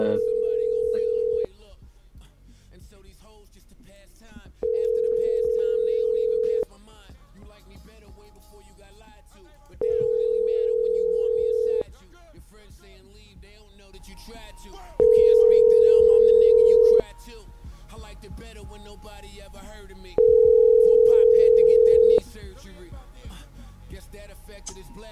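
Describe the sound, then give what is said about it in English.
Ringback tone of an outgoing phone call to a Google subscriber: five steady, evenly spaced two-second tones separated by pauses of about three seconds, fairly loud, with faint low background noise filling the gaps. “The Google subscriber you have called is not available.”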